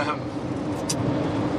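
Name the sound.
car interior road noise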